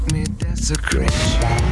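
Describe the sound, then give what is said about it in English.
The engine of a white Testarossa sports car revs hard as it is put in gear and takes off on Wilshire Boulevard, its pitch climbing as it accelerates away, loud with a busy, gritty roar behind it. “I'll put it in gear and I take off.”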